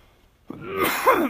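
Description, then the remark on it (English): A man coughs once, a rough, raspy burst that starts abruptly after a brief quiet pause and carries on hoarsely for nearly a second, fairly loud. “The dude's coughing, man.”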